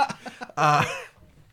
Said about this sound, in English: You gotta clear your throat, buddy.